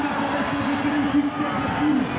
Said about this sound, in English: Oh, the crowd's loving this. Let's listen in.